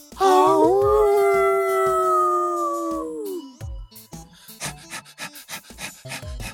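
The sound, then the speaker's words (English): A Lhasa Apso dog lets out a long, loud, wavering howl lasting about three seconds and sliding down in pitch at the end, followed by rapid panting breaths. “since humans can't hear that high, their audio equipment can't reproduce the dulcet and at times plaintive tones of the fluffy resonance chamber of the Lhasa Apso frame.”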